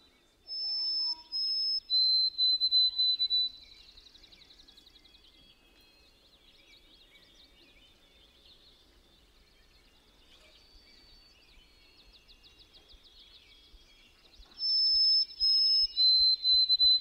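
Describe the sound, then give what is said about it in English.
A white-throated sparrow sings its clear, high whistled song: long pure notes stepping in pitch, heard twice with a quiet stretch of faint bird chatter between the two phrases. “And I actually have a clip of that bird. It's a white-throated sparrow.”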